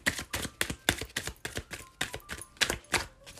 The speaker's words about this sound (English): I feel like three is my lucky number for the guidance cards. One more. Okay, one more shuffle.